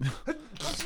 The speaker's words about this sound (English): Bless you. I'm gonna keep that on the podcast. Excuse me. Because it was an absurd sounding sneeze.